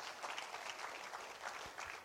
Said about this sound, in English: Yes, go ahead and give the Lord a big hand clap of praise this morning.